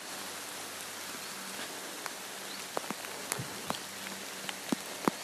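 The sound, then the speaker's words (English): Steady rain hisses down in a soft, even wash over a graveyard, with scattered louder drops tapping and pattering on a surface now and then. No voices, just the continuous rainfall. “A WALK AND TALK AROUND A GRAVEYARD IN THE RAIN”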